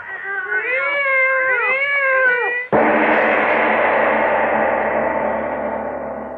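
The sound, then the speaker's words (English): Two cats yowl and caterwaul together in long, wavering, overlapping wails for a few seconds, then a sudden loud crash cuts them off and rings out, slowly fading. “listen to them. They're not ordinary cats.”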